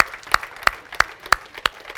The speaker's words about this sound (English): Would you give the Lord a big clap and just thank him for the blessing? Thank you, Lord, for that.